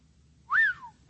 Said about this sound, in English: I've been waiting to whistle all the time from the pulpit. That's worth a whistle, right?